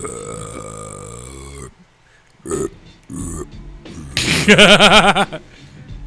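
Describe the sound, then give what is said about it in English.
A man imitates a slow, drawn-out decompressing belch, a long low croaking sound, then a few short guttural bursts and a louder strained belching groan near the end. “And I don't actually burp normal sometimes. It like decompresses.”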